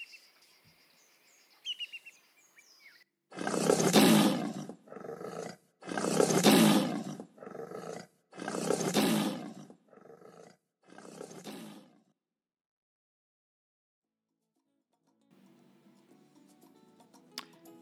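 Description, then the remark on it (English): A lion roars in a loud series of deep, rasping bursts that shorten and fade toward the end, with faint bird chirps in the background before and after. “And never forgetting the king of them all, the lion.”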